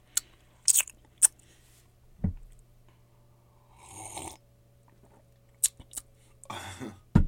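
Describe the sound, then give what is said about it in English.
Quiet slurping sips of hot tea, two drawn-out slurps separated by small clicks and mouth sounds, with no talking. “this tea is good. I'm sipping it. Nice ASMR.”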